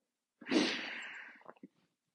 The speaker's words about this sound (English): I'm only sniffling because it's fucking cold.